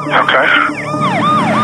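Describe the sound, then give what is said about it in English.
A police car siren, on an officer's car with emergency lights on following behind a driver going 45, wails loudly, its pitch sweeping up and down in quick repeated cycles against a low rumble of road noise. “And there is an officer that's apparently affiliated with your agency with his emergency lights on and his siren on.”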